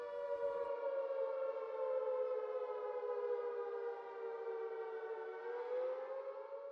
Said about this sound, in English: And yes, of course, he would hear the siren, that infamous sound that we all know and dread, but his stretch of the coast would also sound another, separate siren, known as the Cuckoo Alert or Cuckoo Alarm.